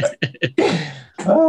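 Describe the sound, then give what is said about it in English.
A person coughs in a quick burst: three short, sharp hacks, then a longer, raspy cough that trails off, followed by one more throaty cough, all fairly loud with no talking. “I'm coughing.”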